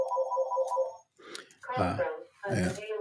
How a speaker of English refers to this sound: And the phone is ringing, but we can't answer that right now.